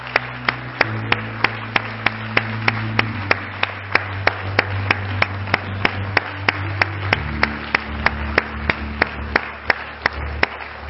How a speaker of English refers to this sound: And I tell you what, while we're all standing, why don't we give all the mothers a good hand clap of appreciation today.